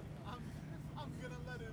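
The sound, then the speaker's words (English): A steady, low engine rumble fills the inside of a bus, droning evenly throughout with a faint hum on top and indistinct voices murmuring in the background. “I'm drinking beer and sitting on a bus.”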